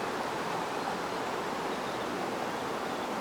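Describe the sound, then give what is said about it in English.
A stream streaming all the way down a hill, with no cliff for the water to fall from: a steady, unbroken rush of flowing water with a dense hiss that stays even in level throughout, with no voices. “there's no little cliff that the water falls from, but it's like it's just streaming all the way down the hill.”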